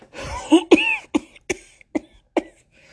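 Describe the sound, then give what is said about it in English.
A grandmother's harsh fit of coughing: a rough, throaty opening burst followed by several sharper single coughs spaced about half a second apart, gradually weakening. No one speaks. “A series of coughs is how Calista is met in response.”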